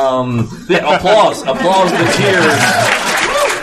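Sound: audience applause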